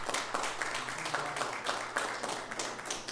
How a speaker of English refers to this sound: And I think a round of applause is in order